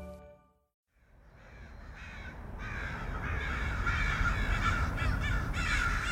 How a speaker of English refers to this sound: Chances are good that is a familiar sound. Crows, Corvus brachyrhynchus, if you want to get scientific about it, are often unwanted urban neighbors. Crows are thought to be loud, pesky, aggressive, even sinister.